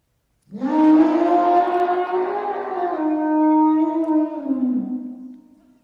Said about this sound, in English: Any guess? That's the elephant.